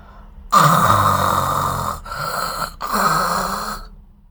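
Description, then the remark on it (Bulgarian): A voice imitates loud snoring up close: one long, rasping, rumbling snore followed by two shorter ones, with brief pauses between them. “Той се очудил, че вратата е отворена и се чувало едно голямо, силно хъркане.”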